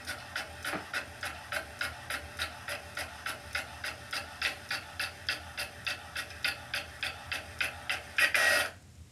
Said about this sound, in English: going to say, that sounds like an old school printer.